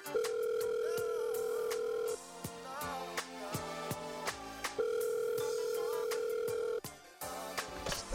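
A phone line rings on the caller's end: two long, steady electronic ring tones separated by a pause of a few seconds, heard clearly over a busy background beat.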